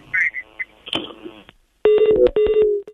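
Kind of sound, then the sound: signal or alarm, telephone call being dialed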